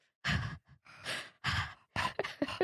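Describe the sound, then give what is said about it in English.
A voice imitates a movie character's heavy mouth breathing: several loud, breathy huffs and sighs in an uneven rhythm, with short gaps between them and quicker gasps near the end. “And her mouth breathing.”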